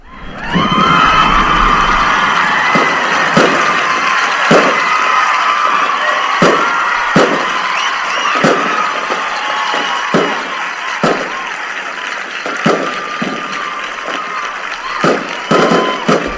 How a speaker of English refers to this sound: That's enough. That's fireworks, not gunshots. It's happiness, not war zone.